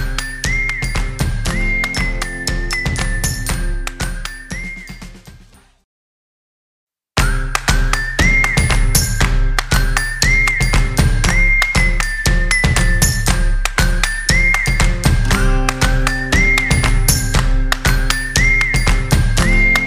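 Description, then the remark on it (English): Loud chimes strike eleven times in a dense, overlapping series of metallic tones, broken by a brief pause of silence before the ringing resumes and carries on steadily with no talking. “And by the way, now we're going to get 11 dongs on this thing, 11 little chimes.”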